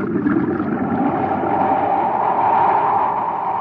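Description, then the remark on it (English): A steady, loud churning rush of a reversed pump forcing water into a mine shaft, with an even mechanical drone and no pauses or change in level from start to finish. “That pipe isn't drawing water out, it's forcing it in.”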